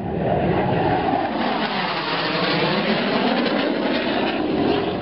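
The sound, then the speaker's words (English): A loud, continuous jet roar fills the scene, with whining engine tones sweeping and shifting as two scrambled jet fighters pass overhead, sustained without a break and no voices. “Air Defense Command was notified, and 2 jet fighters were scrambled immediately.”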